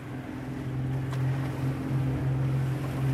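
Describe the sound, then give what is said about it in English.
A boat engine drones steadily at sea, a constant low hum layered with rushing water and wind noise, holding a fairly even loudness throughout with no voices. “A few miles from shore, Rodrigo calls out and the driver quickly whirls the boat around.”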